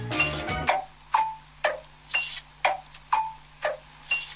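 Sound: clock ticking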